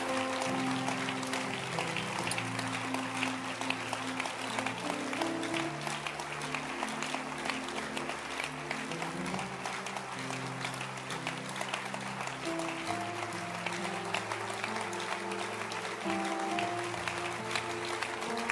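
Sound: audience clapping hands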